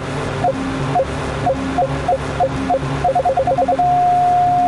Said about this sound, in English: the onboard computer will indicate the right time to shoot with an audible and visual signal. Tap to shoot, but don't wait too long or the enemy will escape. The correct time to shoot is when the beep is continuous. This is the sound you will hear.